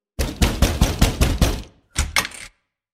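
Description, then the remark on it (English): A fist pounds heavily on a door in a quick run of about seven loud thuds, then a brief pause before a second burst of two or three more blows. “pulled himself to his fully average height, and pounded a fist on the door.”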